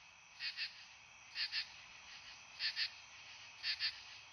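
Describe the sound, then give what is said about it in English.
Katydids calling in September in a steady rhythm, four raspy double-pulsed bursts repeating about once a second over a continuous high, buzzing insect drone. No one speaks. “Then in September, there are the katydids.”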